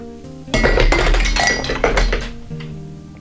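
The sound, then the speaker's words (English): A glass of water gets knocked over on a desk and spills, a loud clatter of clinks and a dull thunk lasting about two seconds before settling, with no one speaking. “That was the feature where I knock over a glass of water and it spills on my desk.”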